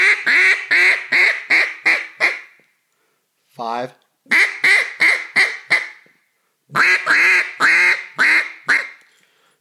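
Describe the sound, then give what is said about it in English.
Three loud bursts of rapid greeting quacks blown on a duck call, each a run of five or six sharp quacks, separated by short pauses, with a single spoken word in the first gap. “So that quack is the basis of those greeters.”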